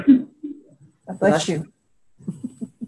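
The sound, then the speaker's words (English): A single sharp, loud sneeze bursts out midway, with a voiced catch in it; quieter murmured voices are heard before and after. “Bless you.”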